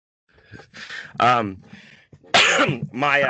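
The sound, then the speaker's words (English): A run of harsh coughs right into a microphone, several rough bursts with raspy throat-clearing between them, loud and dry with short pauses. “This cough right into that microphone.”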